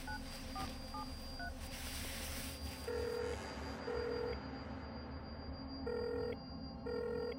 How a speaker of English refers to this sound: But there was no answer, and suddenly, as I stood there, I realized I could also hear his phone ringing from outside the window, too.